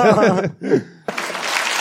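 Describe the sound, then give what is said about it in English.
A voice talks briefly, then a studio audience breaks into steady, fairly loud clapping that carries on to the end, with a little laughter mixed in. “There's a self-righteous clap from the crowd.”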